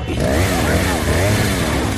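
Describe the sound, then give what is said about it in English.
The Resident Evil 4 chainsaw enemy Dr. Salvador's chainsaw engine revs loudly, its buzzing whine rising and falling in quick surges for a couple of seconds, harsh and continuous. “Chainsaw. You all know what this is.”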